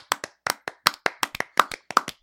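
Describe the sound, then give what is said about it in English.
Hands clap about a dozen times in quick, slightly uneven succession, each clap a sharp, bright smack. The applause is loud and stands alone, with no one talking over it. “Well, you should have saved your applause because I actually also didn't play any League of Legends.”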